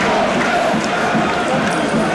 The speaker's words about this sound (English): Listen to this crowd. Absolutely superb.